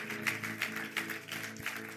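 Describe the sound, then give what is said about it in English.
An audience claps their hands for the Lord in a steady, dense wash of applause with regular louder accents, while a sustained low musical tone hums underneath. “Come on, give the Lord a good hand clap, would you?”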